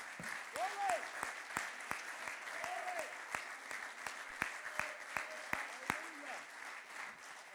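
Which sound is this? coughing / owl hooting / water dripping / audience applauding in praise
audience applauding in praise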